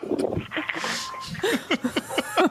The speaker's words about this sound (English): Dog barking?